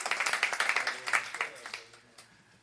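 An audience at a service dedicating a new facility applauds a volunteer for his many volunteer hours on the facility, with dense, overlapping handclaps that stay steady for a couple of seconds, then thin out and fade away to a few scattered claps.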